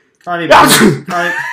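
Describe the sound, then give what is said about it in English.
A single loud sneeze: a rising voiced intake breaks into a sharp, breathy burst, followed by a brief vocal sound trailing off afterward. “I know you guys said bless you through it”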